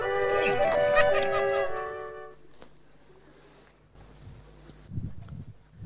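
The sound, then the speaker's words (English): Several geese honk loudly and close together for about two seconds, then fall quiet, leaving soft rustling and shuffling footsteps in the background. “Yeah, no worry, the birds will be back.”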